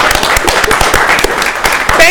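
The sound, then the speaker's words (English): At a day-long symposium, a crowd claps for members of Color Collective, a co-sponsor of the event, in a dense, steady patter of many hands, with cheering voices mixed in and a rising high whoop near the end. “I wanted to shout out, if anybody from Color Collective is in the room, can you please stand, get the hand clap.”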